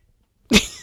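After a short silence, a sudden loud cat screech bursts out, a harsh, hissing yowl of the household's cats fighting that stays raspy until the end.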